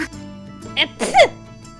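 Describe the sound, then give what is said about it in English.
A single sneeze: a brief voiced inhale, then a sharp, breathy burst with a rising-falling vocal tone, fairly loud against a quiet background with faint hum. “I don't know how I sneeze.”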